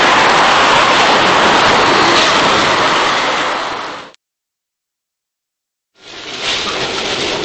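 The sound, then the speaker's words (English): Loud, steady rushing roar and rumble of a U5 U-Bahn train, a line built like a tram, in motion after boarding at Konstablerwache. The noise drops to complete silence for about two seconds, then returns just as strong. “So we've just got in the U5, and the U5 is a strange sort of U-Bahn.”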